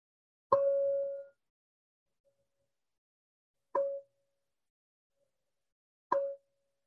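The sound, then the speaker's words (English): A meditation bell is struck three times at slow, uneven intervals at the beginning of a guided meditation sit. Each strike gives a clear mid-pitched tone; the first rings longest, the later two fade quickly, with silence between. “I want you to close your eyes and listen for the bell.”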